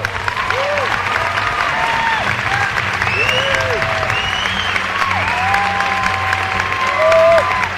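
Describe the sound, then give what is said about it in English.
A theater audience at a Sundance screening of the film The Matador applauds after the movie, a dense, steady wash of clapping that holds for the full eight seconds, loud throughout, with scattered voices and whoops rising over it. “It seems like The Matador is a hit, but applause is cheap.”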